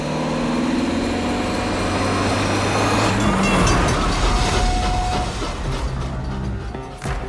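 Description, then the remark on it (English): A high-speed train roars past a railroad crossing, its loud rushing rumble swelling to a peak and then easing off, with steady droning tones running through the noise and no voices. “It's a race against time as the Buick launches itself over the railroad crossing just seconds before the high-speed train sails past behind them, ensuring their escape.”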